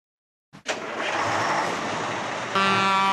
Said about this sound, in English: That chimpanzee's hitting the horn. Driving a truck.